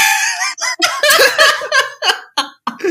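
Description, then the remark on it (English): A bird tweets loudly, a quick run of squawky, harmonic calls in short bursts with brief gaps between them, and no talking over it. “Oh, he tweeted again.”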